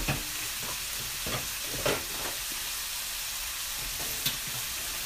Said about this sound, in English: Okay, so the meat is all cooking, the chicken is cooking, and the groundless meat is cooking on the side. So we're gonna saute that.